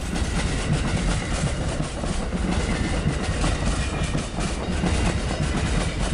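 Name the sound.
train running on rails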